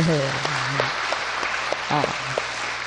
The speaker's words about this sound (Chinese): 对对对，大家鼓掌。